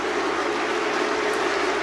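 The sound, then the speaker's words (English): A large stadium crowd of England football fans boos their own players after 11 England players took a knee in support of racial justice, a steady, sustained roar, a low droning chorus of many voices over a dense wash of crowd noise that never lets up. “And this was the booing backlash from their own fans.”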